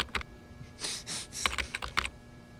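Idle typing on a computer keyboard at a terminal to switch between several computers: a handful of scattered, irregular key clicks with a couple of softer, longer clacks in between, quiet, with no one talking.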